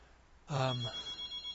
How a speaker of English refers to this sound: that's my telephone in the background. I'm just going to let the machine pick it up